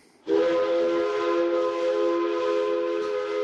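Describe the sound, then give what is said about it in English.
A loud, steady train whistle from a train to Berlin blasts in abruptly and holds one sustained, chord-like tone for about three seconds, with a breathy steam hiss underneath and no voices. “On a train to Berlin, I open up a book, Ballads of François Villon, and my soul knows.”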